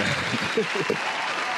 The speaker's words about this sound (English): I know, applause though.